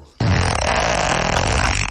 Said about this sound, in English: I love how everyone respects the fart and doesn't talk over it.